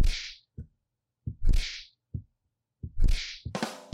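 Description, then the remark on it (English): Punching sound effects triggered by repeatedly pressing a button: three rounds of short low thuds each followed by a sharp whooshing swish, fairly loud, ending with a harsher burst. No one talks. “Took a lot to get all those punching noises out.”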